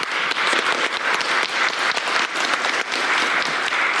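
A crowd applauds steadily for about four seconds, a dense, even wash of many hands clapping at once, loud and sustained without a break or any voices standing out.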